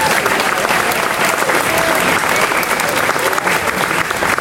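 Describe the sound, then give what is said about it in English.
A crowd claps in steady, dense applause for Craig Nicotero, executive producer and special effects makeup supervisor of AMC's The Walking Dead. The applause holds at an even, loud level throughout, a continuous wash of many hands with no pauses. “All right, guys, another huge round of applause for Craig Nicotero, executive producer.”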